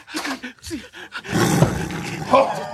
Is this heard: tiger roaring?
yes